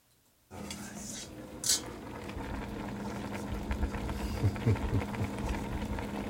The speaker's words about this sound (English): What's cooking on the stove? Spinach, mushrooms, onions, and garlic on this burner. It's going to get mixed in with the rice and mixed with eggs and cheese, and it's going to become a casserole.